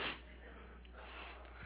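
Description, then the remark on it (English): A single quick nasal sniffle right at the start, short and breathy, then only a low steady background hiss for the rest of the moment. “Sorry, I'm still sniffling from...”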